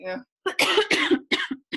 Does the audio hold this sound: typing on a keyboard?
no